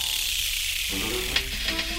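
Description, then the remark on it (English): A turtle hisses by pushing air out of its lungs, a steady breathy rush of air lasting a couple of seconds, with a few short scratchy bursts and faint low tones creeping in toward the end. “So there are lots of sounds that turtles make, including hissing and grunting by pushing air out of their lungs, and lots of special turtle sounds in a very low frequency we can't hear.”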